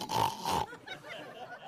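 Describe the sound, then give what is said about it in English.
A person imitates the grunt of a 500-pound sow pig with a loud, rough snorting oink lasting about half a second, followed by quieter breathy sounds. “he looked up and opened his eyes and it was a 500-pound sow pig.”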